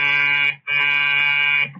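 An apartment door buzzer hums loudly like an angry bee in two sustained bursts, the first about half a second and the second about a second long, with a brief gap between. The tone is harsh and steady.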